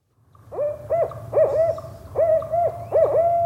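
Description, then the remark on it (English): An owl hoots in a quick rhythmic series, about four swooping, wavering calls in a row, clear over a low, steady background rumble. “Turns out more people are reporting confrontations between humans and owls in Washington and Oregon.”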